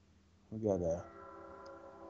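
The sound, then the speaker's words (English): A train passing by, with a short, loud, horn-like blast followed by a steady sustained droning hum that carries on underneath. “We got the lane train coming through.”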